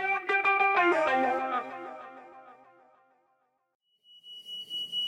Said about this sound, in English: Yeah, and that beeping you can hear is the fire alarm in my house. Isn't that nice? So, as a particular kind of irony to show how urgent the situation is, the fire alarm is ringing. Should you go and are you on fire? It seems to have stopped now,